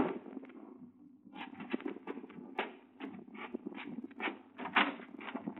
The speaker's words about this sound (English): It was noon when I was awakened by a knock on the door.